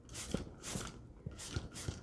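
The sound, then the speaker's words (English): A container of coffee dye being shaken back and forth, making repeated swishing, rattling bursts in a steady rhythm, fairly quiet, with no talking. “Okay, and I'm going to shake it up just in case it was concentrating at the bottom.”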